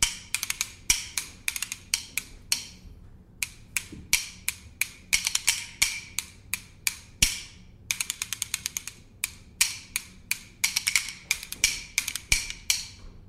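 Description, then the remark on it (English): Bones being played alone: sharp, bright wooden clacks in quick rhythmic runs and rattling rolls, broken by short pauses, steady and moderately loud throughout. “And if you're just listening, this instrument is called the bones.”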